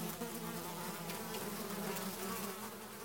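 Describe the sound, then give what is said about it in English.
A dense, continuous drone of buzzing insects held in a squash, like a swarm of bees humming steadily for the whole stretch, with no voices. “But it's hard to let go of the image of the notorious leader, so-called Queen of Kings, lover of Mark Antony and drinker of pearls, according to another favorite legend, calling for her squash full of buzzing insects to be brought to her bed.”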